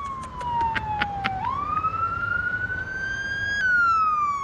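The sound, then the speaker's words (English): A fire truck siren wails loudly and steadily, its pitch sliding down then sweeping back up, over a low rumble of road traffic; no one speaks. “Another fire truck.”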